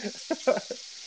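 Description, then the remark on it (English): Steak sizzles in a pan with a steady, crackling hiss that fills the short moment, while a few brief muffled voice sounds pop up over it. “Are you frying a steak right now?”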